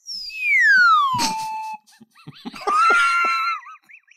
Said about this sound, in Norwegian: Nå skal vi over I en ny spalte her, så nå kan du kjøre en jingle. Ok, her kommer den.